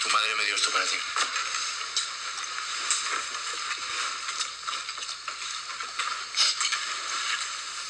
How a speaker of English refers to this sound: Who eats like this? This is gross. Caveman. and he's talking. So. And she is not eating at all. Listen to him slapping his lips, just blah, blah.